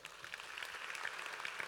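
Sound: audience applauding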